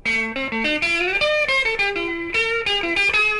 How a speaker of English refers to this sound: And they released the first versions of this in 1966. Vox's fabulous new wah-wah pedal opens the door to a variety of great new sounds. When the foot is rocked forward, the guitar sound becomes sharp.